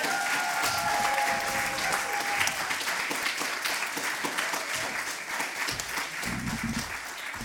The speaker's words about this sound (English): So a big round of applause for everyone who's been involved in this day.